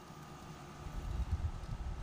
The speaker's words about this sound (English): And that's the air conditioner. Can you hear it?